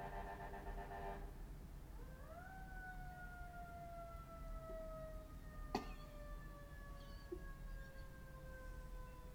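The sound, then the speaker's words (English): A siren wails outside, its tone sweeping up and then sliding slowly downward in one long drawn-out note over a low background rumble, with no one talking. “There were all sirens. Kinds of sirens going.”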